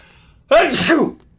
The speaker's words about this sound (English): excuse me, I'm going to sneeze.